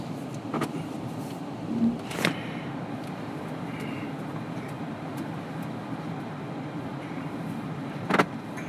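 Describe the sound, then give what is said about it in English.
A car reversing slowly up to a horse box, its engine a steady low rumble heard from inside, with a few sharp clunks and knocks near the start and one more near the end. “Tell you what, if my daughter could drive the car, she'd be better at reversing.”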